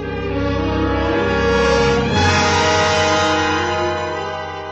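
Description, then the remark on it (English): A loud, steady train horn blares continuously over a low rumble of a passing train, swelling slightly midway before holding to the end, with no voices. “You've a train to catch.”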